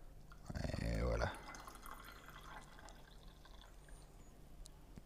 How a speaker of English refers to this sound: Good, just let it in for 15 seconds more, and then we're gonna brew. We're gonna pour this tea. We do brew it, we pour it now. Good. 3, 2, 1, and we can go.